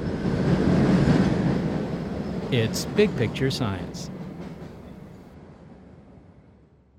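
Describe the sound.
A Boston subway train rumbles loudly into a T station, its heavy roar swelling, then slowly easing off and fading as it slows, with a voice speaking briefly over the noise.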